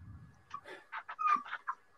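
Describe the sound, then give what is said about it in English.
A dog locked in a room whines in a quick string of short, high-pitched yelps and whimpers, each rising and breaking off, moderately loud, with no talking. “Take your dog for a wee.”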